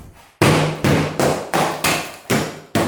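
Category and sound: tool, hammering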